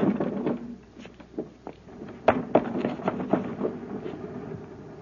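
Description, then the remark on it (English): An unlocked, partway-open window is pushed open from a ledge, making a series of wooden knocks, scrapes and rattles spread over a few seconds, irregular and moderately loud with no talking. “Is that window unlocked? Yes, sir, and it's partway open. All I have to do is push it.”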